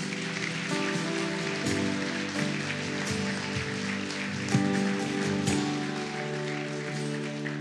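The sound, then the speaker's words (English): A church audience applauds steadily after a prayer, a dense crackle of many hands clapping at once, over sustained musical tones that hold underneath for the whole stretch. “Come on, would you lift up a hand? Clap.”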